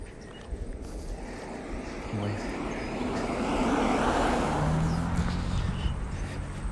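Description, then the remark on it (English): A minivan driven by a woman approaches and drives past outdoors on a day with a light breeze, its low road rumble and tire noise swelling to a peak midway, then slowly fading as it moves off. “Oh, here comes a car.”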